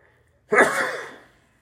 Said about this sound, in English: Pardon me. That sneeze snuck up.